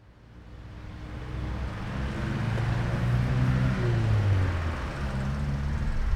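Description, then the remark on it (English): Steady roar of traffic on a main road in Tbilisi, Georgia, heard while walking beside it toward the Eliava Institute, with engines droning and vehicles passing, the rumble swelling louder through the middle and staying dense throughout, no voices. “It's a noisy enough walk next to a main road, but it's a pleasant enough view of the river.”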